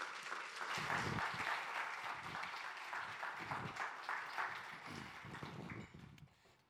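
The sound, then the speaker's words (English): A crowd at Redemption Church welcomes a guest speaker with sustained applause, a dense wash of many hands clapping at a steady level for several seconds before gradually tapering off at the end. “Please give him a round of applause, welcome him, greet him, and here he comes.”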